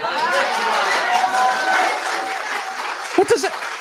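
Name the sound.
clapping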